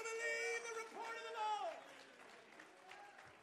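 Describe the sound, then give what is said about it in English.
An audience claps their hands to the Lord continuously, a dense patter of many hands, while a loud voice calls out over it and the applause gradually softens toward the end. “Somebody clap your hands into the Lord right now.”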